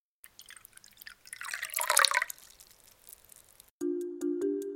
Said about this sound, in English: All right, this sounds like pouring of liquid to me. Mm-hmm. That is totally something being poured. How much liquid did it sound like was being poured? It didn't sound like a ton. That's right. It is a tiny amount of liquid being poured.